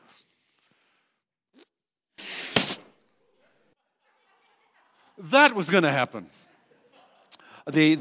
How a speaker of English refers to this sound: That balloon should have gotten like this, but it's an old balloon. It's an old air skin, and it can't contain that air anymore.